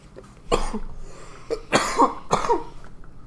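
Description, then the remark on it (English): Several harsh, forceful coughs in close succession, loud, with a rough throaty edge and short pauses between bursts, caused by the density of smoke being inhaled. “It's just because of the density of the smoke. I think is why I am coughing so hard.”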